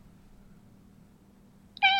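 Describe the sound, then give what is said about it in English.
A low, steady background hum, then a single loud cat meow starts abruptly right at the end and is cut off mid-cry. “It's a cat.”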